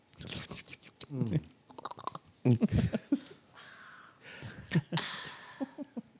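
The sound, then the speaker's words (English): Wet mouth sounds of someone sipping water from a glass: small slurps, lip smacks and a few swallows in an uneven rhythm, with soft breaths between them. “Well, take a sip of my inch water.”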